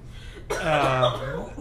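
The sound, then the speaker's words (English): A single voiced throat-clearing sound, fairly loud, lasting about a second after a short quiet moment, as someone recovers after choking. “I choked, sorry.”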